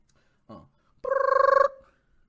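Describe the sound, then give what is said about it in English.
A single short burst of a warbling, trilling telephone ring, loud, preceded by a brief voice-like sound, then silence. “Phone ring.”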